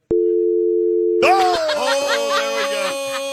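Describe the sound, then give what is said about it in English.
A steady, low-pitched phone dial tone after a SportsLine.com guest hangs up during a sports talk show call hums alone for over a second, then stops as voices and laughter break in and carry on to the end. “Hung up on you.”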